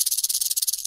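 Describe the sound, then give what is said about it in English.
Two rattlesnake rattles in a box shaken in a fast, steady buzz of dry clicking pulses, fairly loud, with no voices over it. “This box has two rattlesnake rattles in it. Let's see how they sound.”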